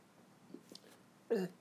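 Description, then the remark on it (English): A single sharp, voiced hiccup bursts out near the end, fairly loud, after a stretch of near silence with only a couple of faint small sounds. “I have these hiccups.”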